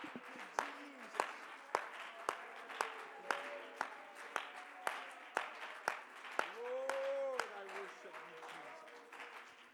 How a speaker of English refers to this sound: If you've laid down your Bibles, why don't you clap your hands to the Lord and give him some thanks for what we feel in his house tonight.